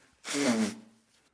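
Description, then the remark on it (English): A single forceful nose blow, about half a second of loud, breathy rushing air with a low honking tone underneath, fading quickly into quiet. No one speaks. Someone is blowing their nose because of allergies. “I'm going to blow my nose because I have boogers.”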